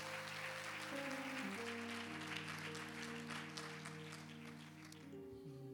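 A crowd claps steadily for about five seconds, a dense patter of applause over sustained organ-like chords that shift pitch, then the clapping thins out at the end.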